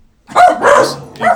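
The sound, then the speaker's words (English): Dogs bark in short, loud bursts, about three barks in quick succession, with no one talking over them. “Pay no attention to the dogs behind the podcast.”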